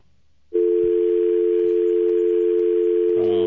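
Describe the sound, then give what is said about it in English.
A loud, steady telephone dial tone on a phone line that has been broken all day switches on after a brief moment of quiet line hiss and hums on unbroken to the end, with faint clicks underneath and no one speaking. “Hey, that phone line's been broken all day.”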